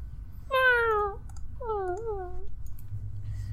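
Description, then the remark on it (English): A cat meows twice, two drawn-out, wavering mews with bright harmonics, the second slightly lower and bending up at the end, over a low steady hum. “It's the cat.”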